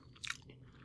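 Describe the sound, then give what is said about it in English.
A single crisp crunch of a snack being bitten and chewed, quiet, a brief crackly burst followed by faint low mouth sounds, with no talking. “I hate chewing with my mouth open so much.”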